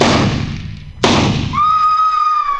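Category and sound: sound effect, rifle shot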